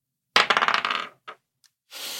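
A rapid clatter of dice being rolled for a perception check, tumbling and bouncing on a surface, slows to two isolated clicks, followed by a soft hissing rustle. No one speaks.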